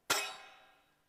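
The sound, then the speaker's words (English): A single bright crash of a pair of hand cymbals banged together, with a sharp metallic attack, then a shimmering wash that rings on and slowly fades over about a second. “So we've got the clash of the cymbals.”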